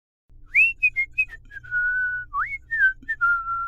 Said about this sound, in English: He had even swum through the Lake of Blood, and instead of crying out in pain, he whistled happily.